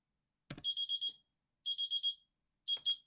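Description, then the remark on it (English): A 3-minute timer alarm beeps in quick bursts of electronic tones, two groups of four rapid beeps followed by a shorter pair, clear, with no one talking. “There's my timer.”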